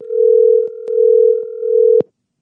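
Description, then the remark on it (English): A steady telephone dial tone hums for about two seconds as a call is placed to a chef, interrupted by a few faint clicks, then cuts off abruptly with a sharp click, leaving silence. “Use our rotary phones. Let's call him now.”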